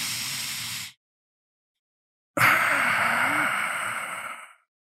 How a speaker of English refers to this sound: inhale deeply through your nose until you can't inhale anymore, and then take one more little inhale